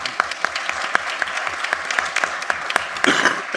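A crowd applauds steadily to welcome a political commentator as a speaker, many hands clapping in a dense, even wash of sharp claps that holds for several seconds and swells slightly near the end.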